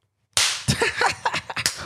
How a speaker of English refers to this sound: Now, I slapped you there. I did slap you on purpose